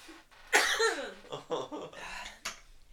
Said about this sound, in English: I don't know why, but vape pens make me cough more.